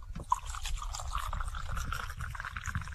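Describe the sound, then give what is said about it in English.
Coffee pours steadily from a big green thermos into a cup at Del Monte Golf Course in the morning, a continuous splashing trickle that starts with a brief knock or clink and has a low rumble underneath. “he'd always pour that cup of coffee right on the radio”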